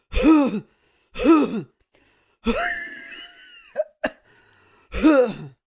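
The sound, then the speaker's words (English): A man coughs in several harsh bursts in a loose rhythm after laughing, with a drawn-out raspy throat-clearing sound in the middle and a sharp catch of breath, fairly loud, no talking. “He was already coughing and you made him laugh.”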